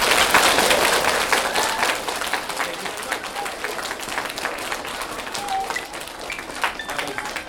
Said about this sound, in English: Let's give Ryan T. Higgins a big round of applause.